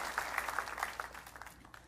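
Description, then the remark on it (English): An audience gives a clap offering, breaking into steady applause, a dense wash of clapping with a few sharper claps standing out, fading slightly toward the end. No one speaks over it. “Would you give him a great big clap offering and tell him you love him?”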